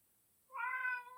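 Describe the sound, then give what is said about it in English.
A single clear cat meow rises after a brief silence, a drawn-out tonal cry lasting under a second with no talking around it. “not meow time”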